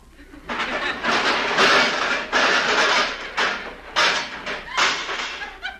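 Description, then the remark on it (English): A heavy stove is dragged across the floor and put back against a door, a loud, grinding scrape in several uneven pushes with brief pauses between them. “Stove.”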